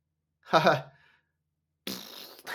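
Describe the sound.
A voice blurts out a short, loud imitation of a fart by the dog Marmaduke from the Marmaduke movie, a wet buzzing burst about half a second long, followed after a pause by a broad noisy rush like a second blown raspberry.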